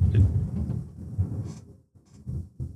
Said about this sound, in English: Oh man, that picked up on my mic. That was a fucking loud ass thunder. Holy shit. I heard that. I'm just boom. God. I knew there was a storm coming, but I wasn't expecting it to actually like shit.